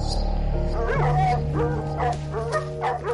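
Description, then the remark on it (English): A cadaver dog barks and yips in a quick series of short, high bursts, with a whiny edge to some of them, over a steady low background hum. “Those cadaver dogs were on to something.”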